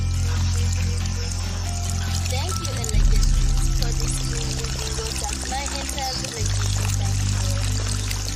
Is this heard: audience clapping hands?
no